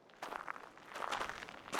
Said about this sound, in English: You hear this sort of crunch of the pebbles beneath your feet. They look like Dippin' Dots. You know, the things that you'd get at like a carnival or you go to like Six Flags or something. That's what this place sounds like.